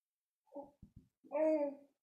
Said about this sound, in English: If anyone just heard that on camera, I'm sorry, that was my daughter burping.